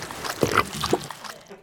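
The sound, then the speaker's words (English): A quick wet slosh as gravy is thrown by a mother onto a man and splatters, a short splash over about a second, with a voice briefly audible alongside it. “Mum, throw the gravy on him.”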